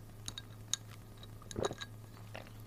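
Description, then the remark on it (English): A few light, high clinks of ice against a glass of water, followed by a brief sipping gulp, all fairly faint over a steady low hum, with no talking. “You hear ice? That's just water.”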